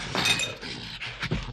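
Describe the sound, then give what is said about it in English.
An ancient cup from 1000 BC is knocked out of a man's hand by a chimp named Max and smashes: a bright clinking crash followed by a few scattered rattling pieces, fairly loud, over in about a second. “And Max knocks it out of his hand and smashes it.”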